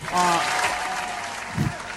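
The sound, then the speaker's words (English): Steady, dense clapping from a group of bonobos fills the whole two seconds at moderate loudness, with a brief tonal, voice-like sound at the start and a low thump toward the end. “Those are all the bonobos clapping.”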